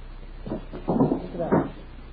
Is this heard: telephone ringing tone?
no